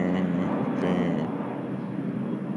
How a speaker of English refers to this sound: I'm gonna wait till that plane passes by.